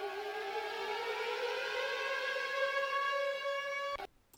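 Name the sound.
sirens wailing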